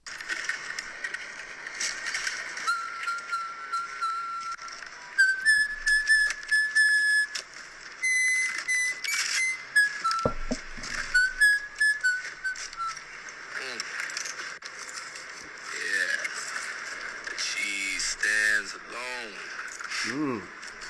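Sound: man whistling a tune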